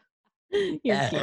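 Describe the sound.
Two loud burps in quick succession after a brief silence, the second longer and more drawn out, with a voiced, throaty rumble.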